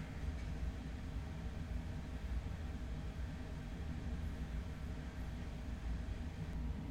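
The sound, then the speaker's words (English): A big, loud air conditioning unit runs steadily, a deep rumbling drone with a broad hiss above it, holding an even level throughout with no voices or breaks. “I'm fighting a big-ass fucking air conditioning, so y'all let me know if y'all hear that.”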